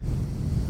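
A loud breath blowing straight into a microphone with a compressor switched on, making a steady low rumbling rush that fills the whole short moment. No one speaks.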